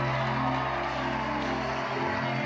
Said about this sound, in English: Can we put our hands together and celebrate Jesus tonight? Oh, if you borrow the hands, tell the person you borrowed it from, you want to use it to clap.